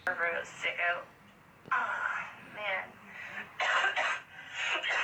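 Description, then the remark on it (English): Several raspy, voiced coughs come in separate bursts, moderately loud, with short pauses between fits and no talking. “He didn't ask for coughing.”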